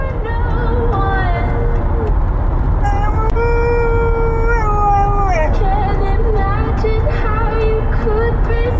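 A dog howls in long, wavering tones that rise and slide downward, singing along to a song playing loudly underneath for the whole stretch.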